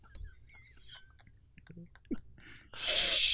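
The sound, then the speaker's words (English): A voice makes a loud, drawn-out "shhh" that fills the final stretch, imitating a shushing librarian as a clue in a timed guessing game, after a few soft mouth clicks and breathy noises. “Shushing librarian.”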